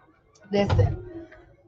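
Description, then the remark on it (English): A door swings shut with a single solid thud and a brief rattling scrape, lasting under half a second before fading into a quiet hum. “So, with all that being said, listen, I gotta shut this door.”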